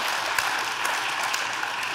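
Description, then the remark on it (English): A standing church audience at City on a Hill applauds the ladies, a dense wash of many hands clapping at an even, sustained level with scattered sharper claps standing out, and no voices heard. “If you would stand one more time and give them a round of applause.”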